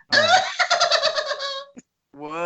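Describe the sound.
A person imitates the cackling laugh of Salacious Crumb, Jabba's little bird-like companion from Return of the Jedi: a nasal, strained voice rattling out rapid, pulsing cackles for over a second, then a brief pause and another drawn-out, raspy voiced burst.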